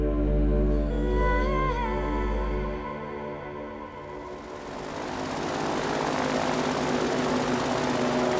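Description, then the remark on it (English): A boat engine roars loudly, a steady propeller-like drone that swells into a broad, rushing roar as the boat speeds bumpily across a swamp, steering around alligators, with no voices. “Anyone ever tell you you're a terrible boat driver?”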